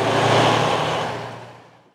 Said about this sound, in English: But for now, expect the trucks to keep on rolling at Otay Mesa.